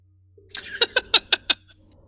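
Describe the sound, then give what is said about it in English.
A voice imitates a breathing mask: a hissy rush of air followed by five quick, evenly spaced raspy pulses with a whistling edge, fairly loud, with no other talking. “There's your little breathing mask sound.”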